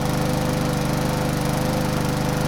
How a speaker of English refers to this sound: yeah, your typical gas-powered lawnmower,